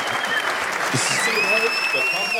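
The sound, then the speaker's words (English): A crowd claps steadily, a dense, even wash of applause that stays loud throughout, with a few thin high whistle-like tones rising through it. “Official three claps.”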